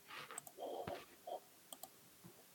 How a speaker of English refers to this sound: Is it the same dice? Yep. The D100? Okay.